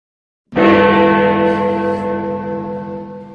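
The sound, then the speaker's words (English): A single loud clock-tower bell strike, like Big Ben, rings out after a brief silence, its rich metallic overtones humming and slowly fading in a long reverberant decay. “in the background, I can hear the chimes of Big Ben Kenobi”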